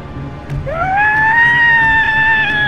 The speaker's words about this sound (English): His words were followed by a guttural, almost animalistic scream. The line cut abruptly.